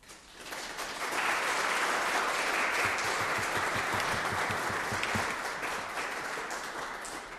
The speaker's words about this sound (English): So we're going to give you a big round of applause now.